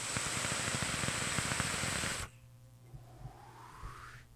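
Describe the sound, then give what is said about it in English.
A vape coil in an RDA (rebuildable dripping atomizer) crackles and sizzles for about two seconds, a dense hiss of rapid tiny pops, then cuts off abruptly, leaving a faint low hum. “I'm really only enjoying it because of the crackle.”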